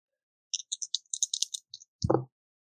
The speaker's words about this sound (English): Okay, so I rolled snake eyes. Plus 2 for danger is 4.